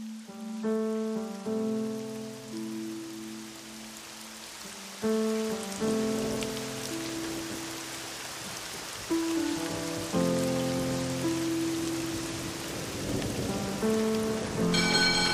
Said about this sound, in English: That's when I looked up. It has started to rain.